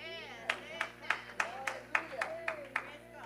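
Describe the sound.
An audience claps praise to the Lord in a steady, even beat, about ten crisp unified claps roughly three per second, with faint voices murmuring and humming underneath.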